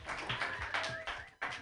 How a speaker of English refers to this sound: Everybody, clap your hands together